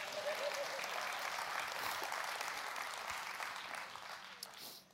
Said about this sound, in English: Well, go ahead and clap. Join that one person.